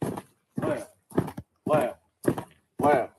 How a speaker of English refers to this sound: That clap is your left foot touching the ground. And you guys listen to the boots. You can hear it. Once you get inside, you can hear it.